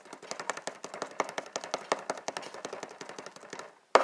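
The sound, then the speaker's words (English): A rapid, steady drum roll of crisp strikes runs for nearly four seconds, then breaks off briefly before one loud, sharp hit closes it. No one speaks. “Number 2 on my list of top 10 lists is, can I hear a drum roll, please?”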